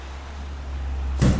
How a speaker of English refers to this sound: The slamming of steel doors and the throb of a digger, well, they're not really the noises you would expect in a wool mill, but Knockando is actually going through a major restoration.